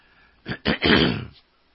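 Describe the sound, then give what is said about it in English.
A person clears their throat: two short rough bursts followed by a longer, gravelly rasp lasting about a second, with no talking. “You have to give me a minute while I clear my throat here.”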